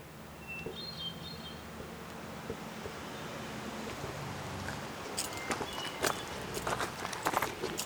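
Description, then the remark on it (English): Footsteps walking up a mountain trail that leads off from the road in a notch, faint at first and then crisp, uneven crunching steps in the second half over a steady low rumble of wind, with a few faint bird chirps early on. “I stopped in the notch, got out of my car, and started up one of the trails that peels off from the road.”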